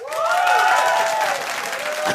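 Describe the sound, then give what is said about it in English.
A loud, steady burst of live audience applause, cast as a vote for the answer "no, stay away": dense clapping with some whoops and cheering voices riding on top, filling the whole moment with no one speaking. “A round of applause for no, stay away.”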